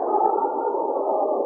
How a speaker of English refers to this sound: Oh, that wind. It's making me suffer such pain.